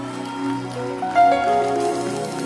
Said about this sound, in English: Are you happy to be in church tonight? Then let your hand clap be louder still.